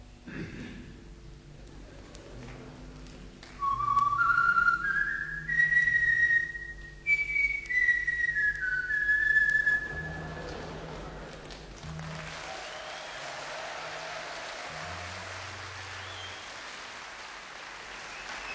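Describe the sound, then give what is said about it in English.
A person whistles a short, bright tune in clear stepped notes that rise and then fall, loud, over soft sustained background music that carries on after the whistling stops; a tune meaning 'supper is ready' in bird language, from a recorded band's live performance in Leicester. “he looked up in the sky and began to whistle a tune”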